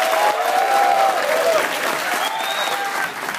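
A round of applause from a group at Triangle Fraternity, steady dense clapping that stays loud throughout, with a few faint whistles or cheers rising above it.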